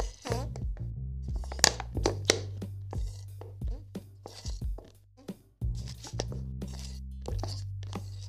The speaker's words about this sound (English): Okay, I don't want anyone to say that was a fart. It's literally my bottle. I don't know if you can hear the water. It's literally a water bottle. It's a fucking plastic bottle. I don't want anyone to say that's fart. It's not fart!